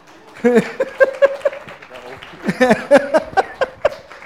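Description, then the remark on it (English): Scattered clapping from a small crowd in two short bursts, individual claps distinct rather than a dense roar, with voices calling out and mingling over the claps. “Can we give them a clap?”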